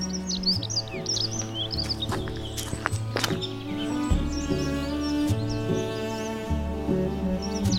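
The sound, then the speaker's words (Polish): A dunnock sings a rapid, high warbling jingle from the crowns of fir trees in a forest, its bursts recurring throughout, layered over steady low droning tones and some faint rustling or footstep-like sounds. “Tutaj ładnie śpiewa jeszcze puchacz Pokrzywnica.”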